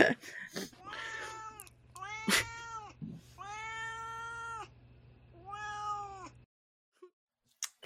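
A cat named Duarte meows insistently several times in a row, drawn-out and whiny calls over a low steady hum, then the sound cuts to near silence with a couple of faint clicks.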